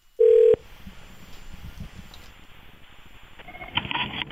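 telephone dialing and ringing

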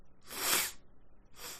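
sniffling

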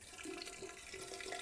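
shower water running

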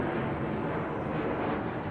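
jet airplane flying overhead

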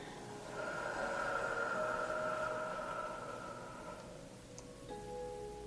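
slow deep breathing out

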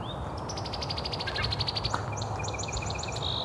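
bald eagle calling

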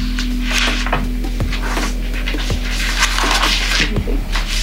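papers being shuffled

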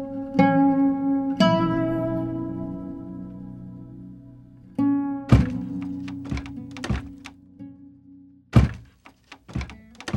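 knocking on a door

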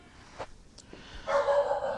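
dog barking

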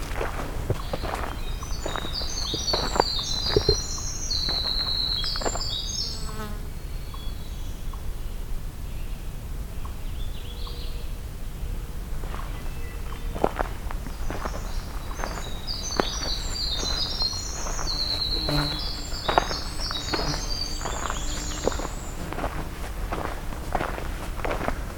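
magnolia warbler song

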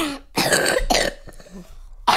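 cough

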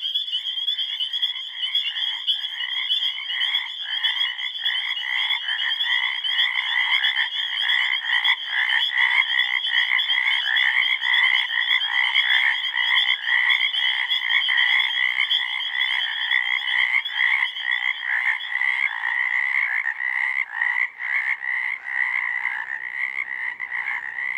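frogs calling

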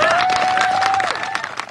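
people clapping and cheering

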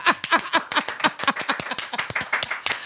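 round of applause

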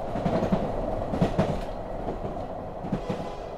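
train rolling on tracks

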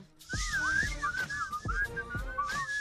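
person whistling

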